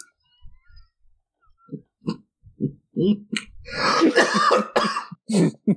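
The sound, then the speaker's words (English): A run of coughing from a person still recovering from the flu, starting with soft throaty grunts and building into a loud, harsh burst of rapid hacking coughs before a couple of final coughs. “Coughing while I'm still recovering from the flu is not good.”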